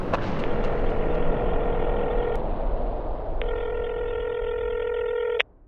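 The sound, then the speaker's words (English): A phone is dialed with a few quick beeps, then two long electronic ring tones sound with a pause between them, fairly loud over a steady low rumble like a car interior. “But I was thinking we could try to make one more phone call together.”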